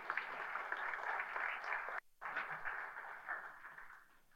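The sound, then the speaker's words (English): An audience at a Sunday church service applauds its servant leaders steadily, a dense wash of many hands clapping together that briefly drops out partway through before resuming and gradually thinning toward the end. No one speaks. “Can we give them a round of applause and say thank you so much?”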